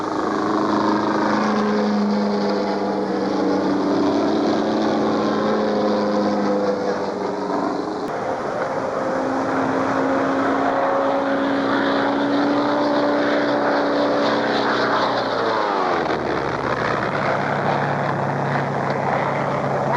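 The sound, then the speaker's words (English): A small racing propeller airplane's engine roars loudly and steadily as it flies very low to the ground in front of a massive grandstand in Cleveland on a speed record run. Its pitch slides downward near the end as it sweeps past. No voices are heard. “How awesome is that when you think about the sound and the fury of that little airplane roaring very low to the ground in front of the massive grandstand in Cleveland?”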